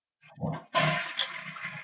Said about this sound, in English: All right. Here comes my flush.